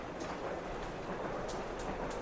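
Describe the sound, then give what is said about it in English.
A train rumbles along steadily in a continuous, faint wash of rushing noise, with a few soft hissing accents over the drone and no voices. “Alright, get on the goddamn train.”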